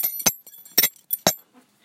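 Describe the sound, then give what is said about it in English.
Several sharp metallic clinks and jangles from a belt buckle rattling against itself, fairly loud, come in quick irregular bursts with short quiet gaps between them. “It's actually a belt.”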